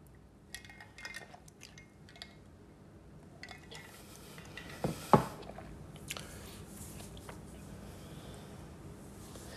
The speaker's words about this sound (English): But moving on from the La Rose brand, let me take a little sip.